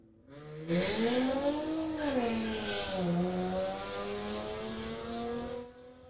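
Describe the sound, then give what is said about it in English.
A car engine revs loudly outside in Third Ward, something that happens every day, its pitch climbing, dipping and rising again in a sustained roar for several seconds before cutting off abruptly. “But other than that, like they do that so much. I'm like, bro. Like, come on. Like, we get it. You have a nice engine.”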